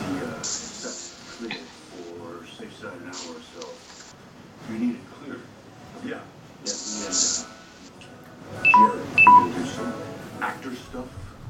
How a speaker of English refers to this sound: What was that? It's my phone dying. Oh no! Just battery dying. How old is it? Oh, it's just a couple years old.